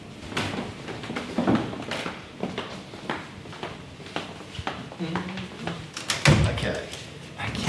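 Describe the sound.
The door to a specimen collection is swung open amid a series of knocks, clunks and handling rattles, with a louder thud near the end and faint murmuring voices in the background.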